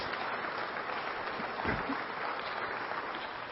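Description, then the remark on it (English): A church crowd gives a steady round of applause for the children's ministry, dense clapping at an even level throughout the few seconds, with no voices standing out over it. “How about a round of applause for our children's ministry and the great job that those guys do?”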